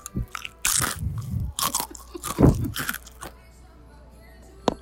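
Loud crunching of a dipped pretzel snack: a sharp bite followed by several irregular chewing crunches, then quieter chewing and a small final snap, with no talking.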